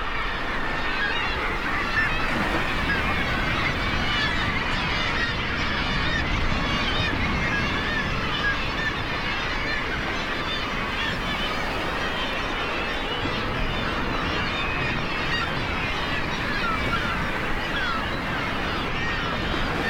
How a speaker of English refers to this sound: Great Island off Newfoundland is the nesting site for a variety of seabird species. As waves crashed against the rocks, Lang Elliott captured the calls of gulls, petrels, and kittiwakes, and the growls of muirs.